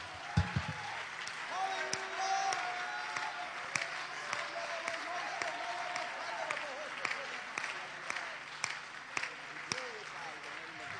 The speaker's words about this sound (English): Let's again clap our hands to the Lord Jesus Christ.